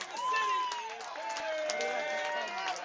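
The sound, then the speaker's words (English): A large baseball crowd roars and cheers steadily for a few seconds after Sundstrom's solo home run off Isaac Martinez, hit high and deep to left field and striking the trolley; a dense wash of many overlapping voices with some clapping mixed in, staying loud throughout. “The crowd is going nuts.”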